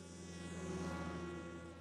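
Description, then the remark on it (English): A snowmobile engine heading this way drones, a steady, insect-like buzz holding an even pitch for a couple of seconds with no voices. “It's a snowmobile heading this way!”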